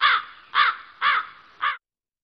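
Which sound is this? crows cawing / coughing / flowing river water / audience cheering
crows cawing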